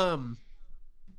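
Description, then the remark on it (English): A loud yawn at 11:30 with a voiced, downward-sliding tone that fades after a moment into near silence and faint breathing. “I have to yawn loud.”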